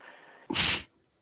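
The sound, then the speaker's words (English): A single sharp sneeze bursts out after a faint breathy lead-in, loud and hissy for about a third of a second before cutting off to silence. “Bless you.”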